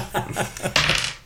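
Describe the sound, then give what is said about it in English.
Dice clatter across a hard surface, with a few quick knocks followed by a brighter rattling tumble that settles after about a second, moderately loud with no one talking. “roll the dice.”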